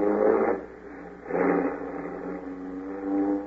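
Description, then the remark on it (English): A car engine revs up and pulls away in the African jungle, its steady mid-pitched drone swelling in two loud surges before settling into a continuous hum, prominent with no voices. “We'll drive straight to Cape Town and take the first boat back to California.”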